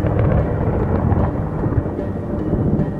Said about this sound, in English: There, above the lake, streaks of lightning shock the sky. From a distance, the lightning is completely silent. But out there on the lake, in the thick of it, the atmosphere rumbles and thunder crashes.